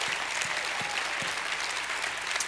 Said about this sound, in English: Give him another hand clap and a shout of praise.